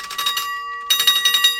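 A small bell rings in two quick bursts of rapid, bright dings, with a short pause between them, fairly loud with no voices.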